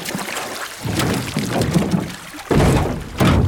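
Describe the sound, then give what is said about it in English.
Water sloshes and splashes, broken up by a couple of dull thumps against a boat hull as a scuba diver heaves themselves up out of the water onto the boat, with bursts of dripping and pouring. “Okay now, pull yourself out of the water and onto the boat.”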